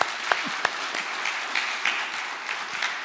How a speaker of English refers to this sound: So let's give them a hand of applause as well.